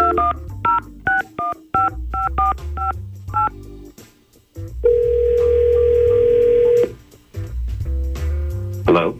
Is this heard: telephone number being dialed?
yes